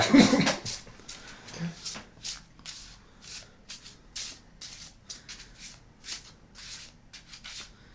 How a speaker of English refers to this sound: All right, here we go. You go with a classic shuffle.